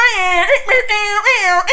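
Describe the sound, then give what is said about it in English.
A voice imitates an air horn with loud, strained, nasal blasts, about three wavering swells run together in under two seconds, coming out more like a whining wail than a horn. “I was trying to make that like air horn noise.”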